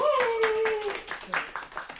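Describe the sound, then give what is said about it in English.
Sparse, restrained golf claps from a studio audience voting, a few soft claps spread unevenly over two seconds, with some faint voices murmuring underneath. “Wow, restrained golf claps for both.”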